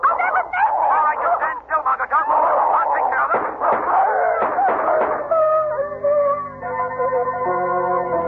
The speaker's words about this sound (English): It's the dogs, the giant dogs. They're chasing him